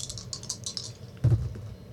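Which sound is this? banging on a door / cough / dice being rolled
dice being rolled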